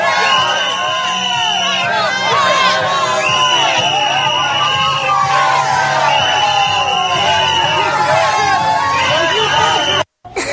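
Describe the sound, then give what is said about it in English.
A crowd booing and shouting at Florida Governor Rick Scott at a restaurant, dense overlapping voices jeering loudly and without a break for about ten seconds before a sudden cut. “Florida Governor Rick Scott booed at a restaurant.”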